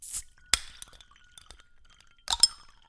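Italian Garganega Pinot Grigio wine poured into a glass, heard as a few bright, tinkly clinks that ring briefly: one near the start, another soon after, then a quick double clink near the end. Fairly quiet, no voices.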